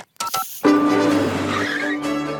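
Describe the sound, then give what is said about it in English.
A few quick electronic beeps of telephone speed dial tones as Luigi's is called on speed dial, followed by a loud, steady, buzzing tone that holds for nearly two seconds before shifting slightly in pitch. No one speaks. “Dad's got it on the speed dial under fire.”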